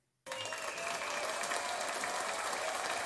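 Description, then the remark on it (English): After a brief moment of silence, an audience bursts into sustained, steady applause, a dense crackle of many hands clapping at an even loudness until the end, with no one speaking. “Listen, guys, if you think I'm the coolest person in the world, clap.”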